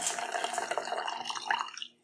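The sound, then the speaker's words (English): Red wine pours through an aerator in a steady, bubbling gurgle with a faint airy hiss, moderately loud, lasting nearly two seconds before cutting off. “Here's the aerator. Here, you do this. This is Misty's turn. Mel reads, Misti aerates and pours.”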